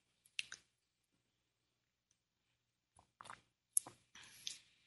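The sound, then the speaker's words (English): Someone sips kombucha tea: a short wet slurp, a long pause, then a quick cluster of quiet slurping sips and swallows, with no talking. “A sip of my kombucha tea.”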